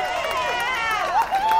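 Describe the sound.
A live audience cheers in answer to being asked whether to skip to the end, many voices overlapping in a loud, sustained burst of shouting whose pitch rises and swells toward the end.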